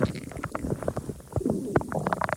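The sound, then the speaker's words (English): A stomach rumbles and gurgles in a continuous stretch of low, bubbly growls, broken by brief squelchy pops that come in uneven bursts at a moderate level. “That is really my stomach, people.”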